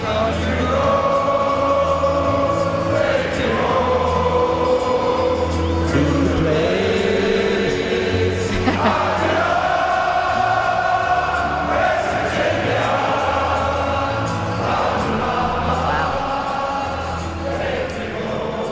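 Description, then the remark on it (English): A large German stadium crowd at a football game in Germany sings together in sustained, swelling chant-like melody, loud and continuous, with many voices blending over a steady roar and occasional rising phrases. “That was the German crowd.”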